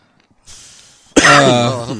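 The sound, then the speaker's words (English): A breathy intake of air followed by a loud, rough, voiced cough and throat clearing, lasting about a second with no talking. “If you blow your nose, you'll stop coughing.”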